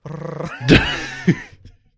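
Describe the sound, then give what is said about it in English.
A person makes a low, rumbling purr with their voice, imitating a purring magical spellbook character named Bookie, a throaty growl lasting about a second and a half, swelling in two rough bursts before trailing off. “Yeah, whenever he purrs, like the letters get jumbled up on his pages.”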